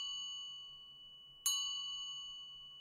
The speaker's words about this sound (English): It begins with four bells.